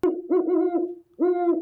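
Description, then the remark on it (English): An eastern screech owl gives two quavering, tonal calls in quick succession, the second starting after a brief pause. The calls are clear, with no voices. “Eastern screech? Yeah.”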